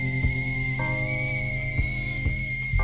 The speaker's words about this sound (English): Kettle whistling.